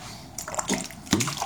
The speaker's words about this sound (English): Sorry, I was just drinking water.